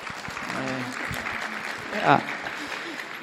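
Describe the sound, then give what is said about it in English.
A church audience claps steadily for a few seconds, a dense, even patter of many hands, with a couple of brief voices calling out over the applause, as a woman is brought up to speak. “give her a little round of applause.”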